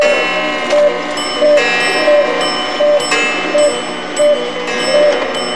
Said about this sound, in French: Qu'est-ce que j'entends ? Mes horloges ? Oui, il est 8h.